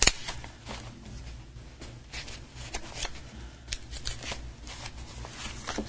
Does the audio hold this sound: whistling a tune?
no